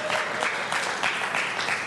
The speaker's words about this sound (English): I mean, awesome. You can clap.